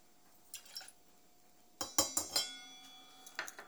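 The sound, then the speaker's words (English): Glasses clink repeatedly as a girl mixes a Bloody Mary: a few light taps, then a quick run of bright, ringing chinks, and a couple more near the end, with no talking. “For those of us who are hearing the sounds, the girl is making a Bloody Mary.”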